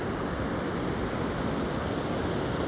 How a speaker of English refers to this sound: the water is like almost like this icy clear blue in spots, and the waves are rolling in.